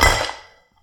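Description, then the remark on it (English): A single sharp clink of glass drink bottles, including Williams Caesar Augustus, knocking together as they are pulled out of an ice bucket, bright and ringing, then fading out within about half a second. No voices. “Are you pulling those out of an ice bucket?”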